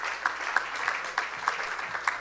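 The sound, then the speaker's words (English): A crowd applauds steadily at a salon at the Savor 2013 beer event, a dense wash of many hands clapping with a few sharper, louder claps standing out at regular intervals, with no talking. “Come on, give it another round of applause.”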